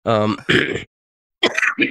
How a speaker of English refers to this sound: I so rarely cough anymore.